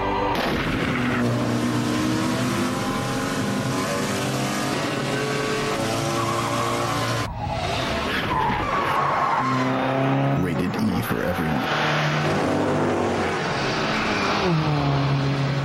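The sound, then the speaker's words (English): Racing cars in the 2004 PlayStation 2 video game Gran Turismo 4 roar loudly and continuously, engines whining up and down in pitch while tires skid and squeal, with a brief break midway before the racing resumes. “The Gran Turismo 4. Yeah, I love Gran Turismo.”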